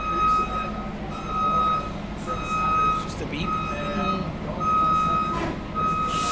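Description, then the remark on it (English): A large Dublin city bus idles and passes by with a deep engine rumble while its reversing alarm sounds a steady series of loud, high beeps about once a second, against background street noise. “And we'll let the bus go by.”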